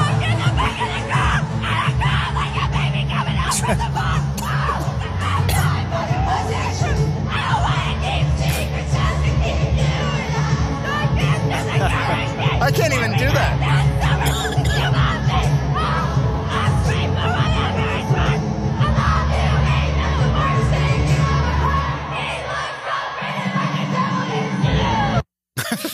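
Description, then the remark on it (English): A packed concert crowd roars along, with a fan scream-singing the song lyrics over loud amplified music and dense cheering; the din stays intense throughout before cutting off abruptly near the end. “this is all around you if you're at an Eras Tour show. Somebody singing scream shouting the lyrics”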